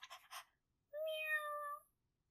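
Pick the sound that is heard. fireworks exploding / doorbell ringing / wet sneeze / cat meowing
cat meowing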